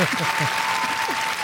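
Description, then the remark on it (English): A crowd claps steadily for a guest introduced as a super fan, a dense, loud wash of applause with no breaks, while faint voice-like tones murmur underneath. “I think they're clapping louder than they ever have.”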